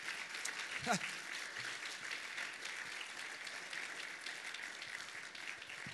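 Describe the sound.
A church audience of an Assemblies of God church in Marion applauds two pastors in the morning, with dense, overlapping clapping that holds at an even level throughout, and a brief voice is heard near the start over the applause.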